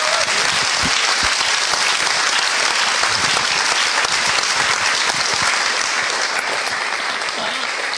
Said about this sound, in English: Amen. Amen. Thank you, guys. Wonderful. That's wonderful. Let's give another clap. That's fantastic.